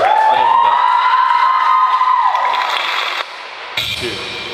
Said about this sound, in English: Okay. I'm done. Thank you. Please clap